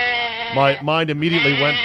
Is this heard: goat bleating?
yes